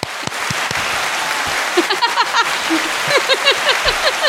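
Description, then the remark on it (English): A steady burst of crowd applause, dense rapid clapping holding an even level throughout, with short rising and falling whistle-like whoops joining in over the second half. “I need a round of applause. Oh, okay. Let's cue the applause.”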